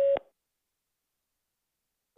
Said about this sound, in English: Now let's record your greeting. If you record after the tone, hit any key when you're done.